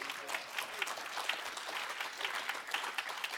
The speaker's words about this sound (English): You can sit down. Go ahead. I like you standing there and applauding, but it's not good for my soul.